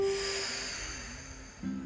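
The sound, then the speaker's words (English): A long, deliberate, exaggerated breath drawn from the stomach, with a steady airy rush that slowly fades over about two seconds, alone without any talking, faint hum underneath. “So it's a real exaggerated breath, breathing in from the stomach.”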